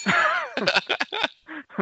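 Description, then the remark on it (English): A bright, ringing bell strikes once and shimmers for about half a second, followed by a quick series of shorter clanging and dinging hits. “that's not a gimmick phrase, but it's definitely worth a bell.”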